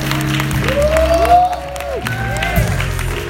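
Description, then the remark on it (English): An audience at a church service claps steadily for several seconds for a new member joining, with rising and falling whoops and cheers riding over the dense applause and a low musical hum underneath. “Y'all put your hands together.”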